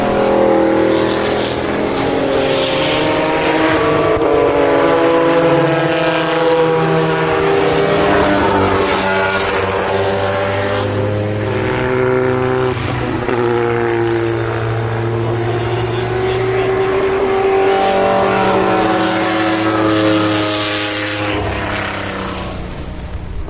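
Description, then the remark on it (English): Loud historic Group C race cars, including Nissans and a Spice, roar past one after another at Le Mans in the rain, their pitches rising and falling as they sweep by, with a steady wash of engine noise filling the whole stretch. “That is the sound of some grand masters from the history, the grand history of the grand race that is not Grand Prix, but Le Mans.”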